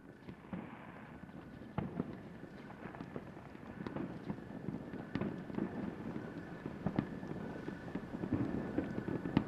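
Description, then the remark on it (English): Distant fireworks in December thump and crackle at irregular intervals, a scattered series of muffled booms over a steady low rumble of wind, with no voices present. “I can hear the fireworks.”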